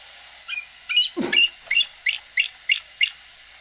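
A bald eagle's thin, high-pitched chattering call: a steady run of about eight piping chirps, with a louder, sliding shriek early on, heard clearly and alone.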